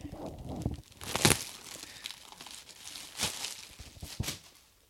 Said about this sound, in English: Oh, hold on. We got a roll of toilet paper right here. I'm going to roll out 7.